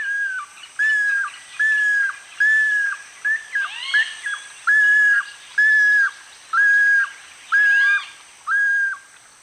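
Groove-billed Ani calls: a steady series of loud, clear whistled notes repeating about once a second, with a few rising, slurred notes mixed in, with no talking.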